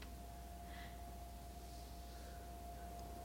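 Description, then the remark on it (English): A faint, steady refrigerator motor hum drones without a break, with a thin constant whine riding over a low buzz and a soft hiss. No one speaks. “It sounds like a motor. Or a refrigerator or something.”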